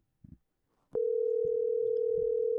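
A couple of soft clicks, then a steady electronic phone tone comes on and holds, like an outgoing call ringing on the line with no answer, with faint handling thumps underneath.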